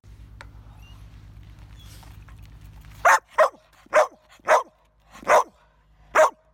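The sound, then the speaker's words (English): A young dog, almost 3 years old, barks sharply six times in quick succession, loud, after a few seconds of low rumbling background noise like wind or an engine, as its owners try to mountain bike with it. “They sent along a little bit of video here as an example of what it is he's doing when they're trying to mountain bike with him.”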